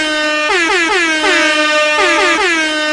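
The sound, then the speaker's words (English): Loud, brassy air horn blasts fire in quick rhythmic bursts, the classic reggaeton DJ effect, each blare dipping in pitch as it repeats. The horns play alone with no talking. “Okay, so this is the part where the reggaeton air horns need to go for my introduction.”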